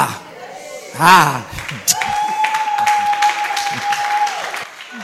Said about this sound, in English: Are you clapping? Are you blessed?